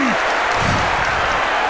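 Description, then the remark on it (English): A loud, steady roar from a large stadium crowd at a Wigan versus Hull FC match, cheering and clapping in a dense wash of noise that holds without a break, with no clear voice standing out. “Crowd get excited.”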